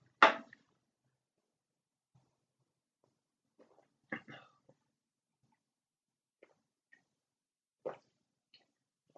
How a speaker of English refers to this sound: Oh, sorry for the ASMR gulping. That is how big a shot she just poured. It was a 4-gulper.